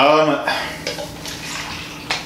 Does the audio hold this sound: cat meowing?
no